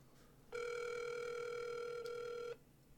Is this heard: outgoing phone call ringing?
yes